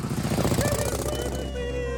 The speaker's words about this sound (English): Mr. Danvers, is that Grandma Sweeney on a motorcycle?